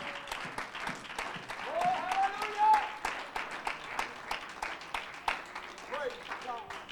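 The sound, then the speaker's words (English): A church audience claps together in steady, dense applause of praise to God during a morning service, with a few voices calling out over the crowd of hands. “Can you help me give God a hand clap of praise this morning?”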